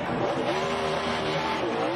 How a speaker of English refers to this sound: And like the in-car camera is Denny Hamlin aggressively flipping him off as he's doing a burnout into the nose of the 48 car.